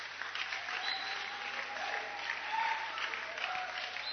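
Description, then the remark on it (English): A crowd at a camp claps steadily for several seconds to welcome a reverend, a dense, even wash of many hands with no single claps standing out, holding at a moderate level throughout with a few faint voices mixed in. “Oh, clap for him.”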